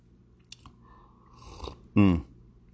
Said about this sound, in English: Having said that, wait a minute, let me get a sip of this coffee.